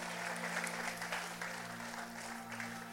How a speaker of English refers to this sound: I need you to give praise to Jesus here. I need you to give him a big clap in this house right here.